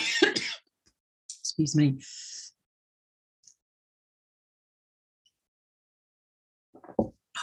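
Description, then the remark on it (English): A few harsh coughs in short bursts, with one throat-clearing rasp, then a long quiet gap before a last cough near the end. “The camera comes on and I start to cough.”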